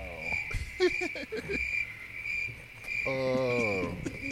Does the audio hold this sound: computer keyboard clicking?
no